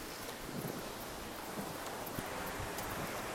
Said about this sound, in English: I don't know as well if you can pick up the waterfall on the audio. There's a beautiful waterfall here.